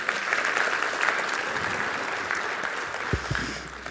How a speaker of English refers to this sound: If you could give a round of applause for these ladies.